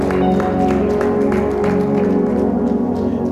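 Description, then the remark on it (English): An audience claps in a steady rhythm as a clap offering to the Lord, the sharp claps riding over loud, sustained keyboard or organ music that plays throughout. Nobody speaks. “The Lord a good clap offering somebody.”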